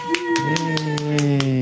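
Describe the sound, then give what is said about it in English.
A quick, even run of about eight hand claps in a studio by the host, a PR person and a producer welcoming comedian Dane Baptiste, sharp and fairly loud, over a drawn-out vocal cheer that holds a steady pitch beneath them. “That was just me clapping.”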